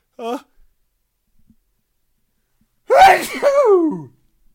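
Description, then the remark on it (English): A short voiced intake, a pause, then a single loud sneeze that bursts out sharply and trails into a drawn-out vocal tail. “And I'm going to sneeze now.”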